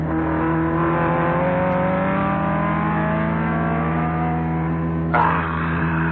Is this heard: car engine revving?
yes